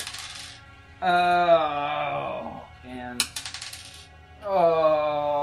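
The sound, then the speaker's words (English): A brief rattle and clatter of dice rolled onto a table, the roll coming up a 2, landing between loud, drawn-out vocal sounds from people. “That is a 2 for my mid. I think you need to get new dice.”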